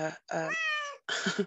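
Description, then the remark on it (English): A cat meows in three quick, fairly loud calls, the middle one drawn out with a sliding, wavering pitch. “Yeah, the cat is too. She also laid on my notebook where I have my notes.”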